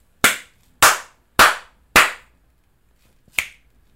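Four sharp hand claps at a steady, unhurried beat, followed after a pause by a single quieter, brighter finger snap. No talking.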